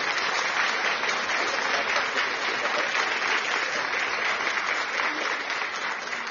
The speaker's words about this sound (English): Give a clap of offering unto the Lord. Give a clap of offering unto the Lord.